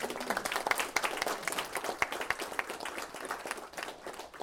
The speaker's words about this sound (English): Now, I think we should insert a round of applause.